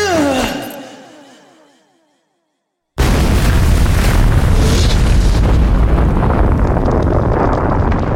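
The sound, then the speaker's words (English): A falling, descending tone fades into a second of silence, then an entire stone temple collapses into a sinkhole in the African jungle: a sudden booming crash that becomes a loud, sustained rumble of tumbling rubble. “The entire temple finally collapsed, crashing down upon itself and sending a spectacular plume of dust and rubble shooting forth from the sinkhole and over 2,000 feet into the African sky.”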